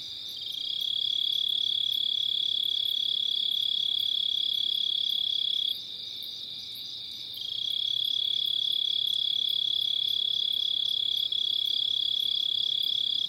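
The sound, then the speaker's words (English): A dense, high-pitched chorus of crickets and other insects trills continuously at night at the edge of a small, ephemeral woodland wetland, steady and fairly loud, easing off briefly midway before swelling back; no voices are heard. “Listen to all of the insects, especially the crickets.”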